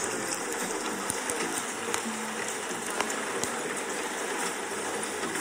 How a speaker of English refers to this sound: it was a coffee shop / restaurant on a rainy day with a fire